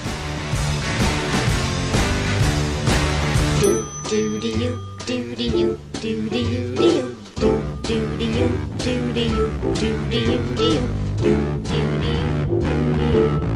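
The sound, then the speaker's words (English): Polished, full-band music from an advert for a casino hotel in Las Vegas plays loud with a steady pulsing beat and layered instruments, briefly thinning out in a short breakdown before the full groove returns. “actual dialogue in it, but the audio is still great, and I'll talk a little bit about it after you just play the music.”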